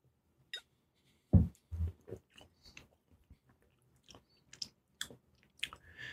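Sips of a fizzy soda being taste-tested: a sharp slurp followed by a scatter of wet mouth clicks and soft swallows, quiet and intermittent, with no talking.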